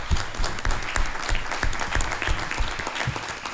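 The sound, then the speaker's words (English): A crowd claps steadily in a dense, even round of applause for the young people who asked the questions, many hands overlapping into a continuous patter with a few sharper individual claps standing out. “They did a heck of a job here asking us questions, and I think they deserve a round of applause, too, you know?”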